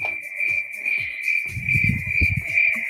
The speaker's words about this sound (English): Crickets. That's tough right there.